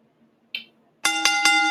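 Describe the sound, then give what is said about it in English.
A brief soft rustle, then a wrestling ring bell clangs loudly three times in quick succession, its bright metallic ringing sustained, with no voices. “Ring the bell, ref. Bing, bing.”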